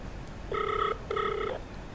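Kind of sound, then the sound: signal or alarm, phone call ringing tone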